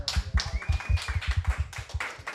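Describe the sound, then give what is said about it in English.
A short burst of brisk, steady clapping from a show audience, with crisp slaps and soft low thumps, lively, plus a faint whistle rising briefly above it. No one speaks. “Ladies and gentlemen, round of applause.”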